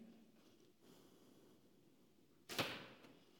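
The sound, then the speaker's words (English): After a quiet, hissy lull, an arrow whooshes and thuds sharply into a block, a single loud hit that fades quickly, followed by a faint small tick. “Let's see if your strength will protect you from this arrow.”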